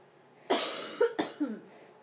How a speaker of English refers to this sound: Oh, Mama is coughing.